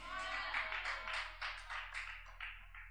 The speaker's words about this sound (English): Oh, I must be preaching so good, because this is my brother here. He just clapped for the first time I could notice.